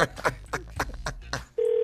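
A quick series of about six keypad beeps as a prank phone call is dialed, followed by a steady, sustained ringing tone as the call starts to ring through. No voices.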